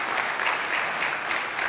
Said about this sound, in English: Give the Lord a hand clap for blessing and faith today.